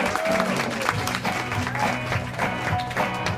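A morning audience claps steadily in a dense, sustained round of applause, the many overlapping hand claps forming a continuous crackling wash with faint crowd murmur underneath.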